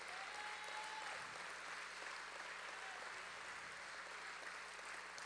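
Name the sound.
audience applause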